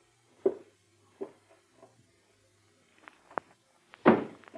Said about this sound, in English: Anything else you can deduce from Mr. Thomas's footsteps?